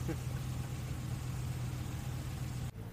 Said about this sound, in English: Pause it there for a second so that truck could leave. It was literally right next to us.